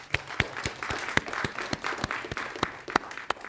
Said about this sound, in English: So please join me again in a round of applause in thanking our sponsors.